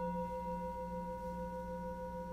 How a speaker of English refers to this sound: Noticing the sounds that you hear, wherever it is that you're sitting. Noticing the sound of my voice, the sound of the bowl.